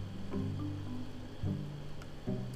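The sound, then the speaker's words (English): Broccoli rabe is poured into a shrimp and tomato sauce for pasta, giving a continuous wet, squishy sloshing with a couple of louder soft plops over a steady low hum. “And I got the broccoli di rapa. We pour it together.”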